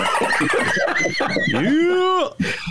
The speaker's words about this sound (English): Yeah! I love the Dolphin sound, man. Only on the Ben Jarofsky Show, the Dolphin sound.